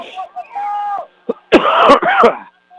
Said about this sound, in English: Excuse me. I'm so sorry. Do not mean to cough like that